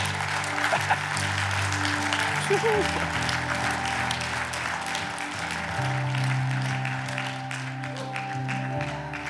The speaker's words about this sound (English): Come on, yeah, let's clap. Here they come.